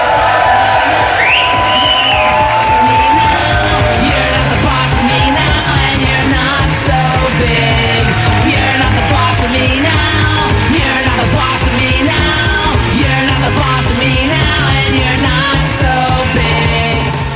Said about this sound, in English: Because the applause was so loud.